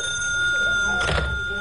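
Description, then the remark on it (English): A telephone in a phone booth rings once in a short, bright metallic burst, standing out over a steady background hum. No one speaks. “I hadn't been there 2 minutes before the phone rang.”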